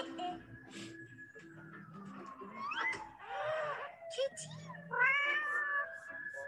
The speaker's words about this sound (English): Girl. Cat. Girl. It's cat. Mm-hmm. It's cat.